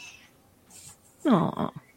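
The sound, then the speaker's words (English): A single cat meow, fairly loud, with a rising then falling whine lasting about half a second. Quiet background sounds surround it, and no one talks. “Kitty. Look at that.”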